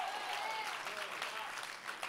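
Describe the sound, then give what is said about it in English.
An audience claps to thank God in a steady, dense wash of applause that holds at an even level throughout, with faint tonal voices or cheers drifting underneath. “Somebody clap right now and thank God.”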